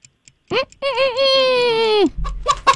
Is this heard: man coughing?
no